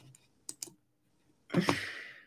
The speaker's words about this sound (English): Canada soccer schedule. That's what I'm typing in right now.